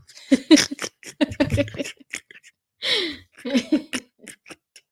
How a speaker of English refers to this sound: Thanks for snorting right into the mic as soon as I press record. Just really setting us up for an amazing show today. Can you do it again, please? I love the way your sniffles smell.